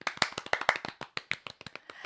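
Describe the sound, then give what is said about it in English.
Quick, irregular hand clapping by a person applauding themselves, roughly a dozen sharp claps over two seconds, bright and snappy with uneven spacing, with no talking over it. “Oh, you're giving yourself an applause.”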